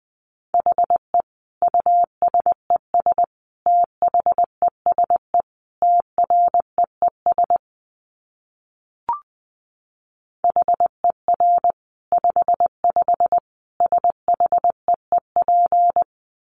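Morse code sent at 20 words per minute: a steady mid-pitched tone keyed in quick dots and longer dashes, broken by a pause with a single soft click before the pattern resumes.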